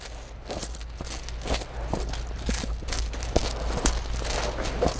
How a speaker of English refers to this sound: Nevertheless, those coins in his pocket kept jingling. His legs kept moving, and so he focused all he could on that sound.